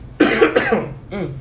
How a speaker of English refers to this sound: That smoke got me coughing.